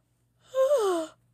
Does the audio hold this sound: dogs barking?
no